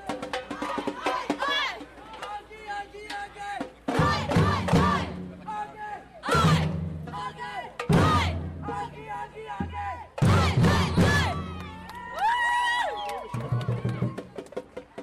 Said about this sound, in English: Has come to Derry for the first time, and the Gaels are banging their drums on the city walls.